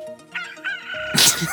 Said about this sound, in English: There you go. That's not a seagull. That's not a seagull. I didn't have seagull on the app, so that's the close. That was the close I got. Rooster.